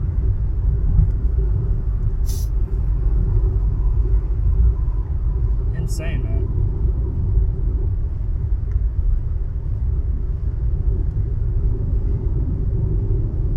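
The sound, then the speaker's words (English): Steady, loud low-frequency rumble of a car interior while driving in traffic, constant throughout, with a couple of brief sharp clicks and a man briefly speaking over the engine and road noise. “There's backed up cars from that point on all the way down.”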